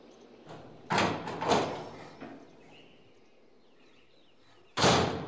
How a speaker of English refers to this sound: Go on then. I know you've been waiting for this moment. Try that clunky-ass key in the tower door.